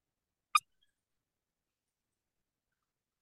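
A single brief, high-pitched squeak from an electronic predator call playing a coyote sound at volume 25, faint and cut short, followed by silence with no voices.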